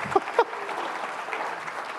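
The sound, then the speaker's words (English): A crowd applauds steadily to welcome a guest, many hands clapping in a dense, sustained wash that holds at an even moderate level, with a couple of sharper claps near the start. “You can clap.”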